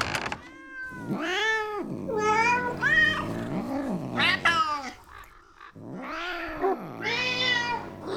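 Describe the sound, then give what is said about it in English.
Several black cats at Arnbjörg's home for orphan familiars yowl and caterwaul in long, rising and falling wails, overlapping loudly, with a brief lull in the middle before another drawn-out howl. “You're gonna need a few black cats to cross paths with.”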